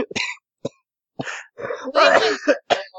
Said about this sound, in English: I'm coughing because I'm laughing.